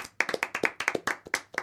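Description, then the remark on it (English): A short burst of light clapping from a few people after a party trick, quick irregular claps, moderately loud, lasting under two seconds with no talking. “Little round of applause”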